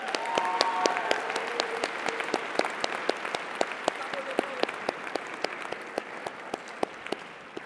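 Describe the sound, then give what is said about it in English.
An audience applauds steadily for several seconds for the college's trustees and trustee advisors, a dense wash of many hands clapping with sharper individual claps standing out, tapering slightly toward the end. “And let's give them a big round of applause.”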